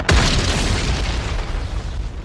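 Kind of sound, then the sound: sound effect, explosion boom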